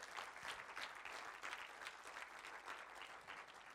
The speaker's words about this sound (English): Give those guys a round of applause. Awesome.